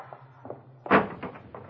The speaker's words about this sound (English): out first, Pop, and open the street door. All right, …, I'll get it open for you.